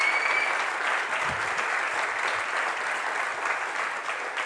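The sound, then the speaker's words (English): A church audience applauds steadily, many hands clapping at once in a dense, even wash of sound that holds at a constant loudness for several seconds, honoring those who started the church. “Would you just give with a hand clap, just let them know how much they mean.”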